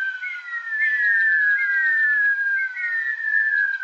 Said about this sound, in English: As the rhea eggs are about to hatch, the chicks, while still inside the egg, begin to make a curious whistle. Imagine 50 or more, all whistling at once.